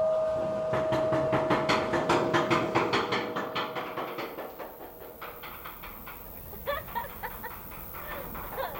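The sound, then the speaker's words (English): A fairground ghost train ride clatters along with fast, rhythmic mechanical knocking and a steady whining tone, gradually easing off before a few scattered clunks near the end. “Then he got the ghost train going.”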